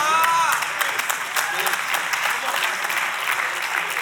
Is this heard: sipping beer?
no